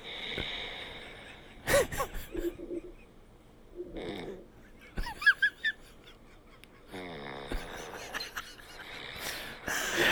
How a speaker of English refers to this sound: Let everyone hear me snore. Dude, it's not working.